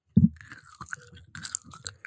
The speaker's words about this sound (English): I have a baseball bat with your name on it if you keep chewing.